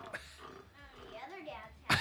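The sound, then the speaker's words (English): A man vocally imitates a cat's purr with a low, rumbling, grunting voice while acting like an elephant, then ends with a short, loud, breathy snort. The sound is fairly quiet until that final burst. “He's like purring like a cat, but acting like an elephant.”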